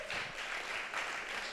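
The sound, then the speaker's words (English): A crowd applauds steadily to show they plan to vote in the presidential election, a dense wash of clapping that holds at an even, fairly loud level for a moment with no voices over it. “Applaud if you're planning to vote.”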